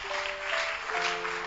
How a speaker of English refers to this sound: Clap for Jesus.